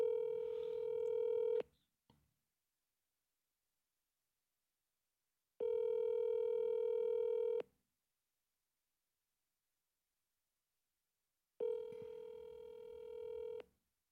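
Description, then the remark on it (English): An outgoing phone call rings on the line: three long, steady electronic ring tones, each about two seconds, separated by several seconds of silence, clear and fairly loud with no voices. “Let's see if we can get our good friend Bobby Lashley on the phone here. See if he picks up.”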